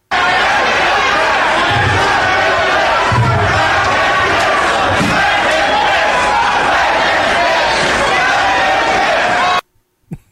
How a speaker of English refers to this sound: But here's the fans chanting as Douglas is sitting in the middle of the ring.